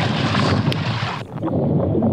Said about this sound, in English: The guys stuck a GoPro in the water and recorded the shark biting the boat. Now, the camera was underwater when he says he just bit the boat. So it's literally underwater. But here's the sound.